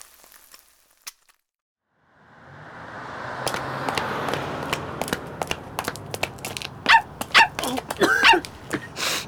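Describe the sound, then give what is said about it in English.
A dog gives several short, sharp barks and yips, clustered near the end, over a steady rustling, crunching noise with scattered clicks and thumps. “Get away from me, you smelly dog!”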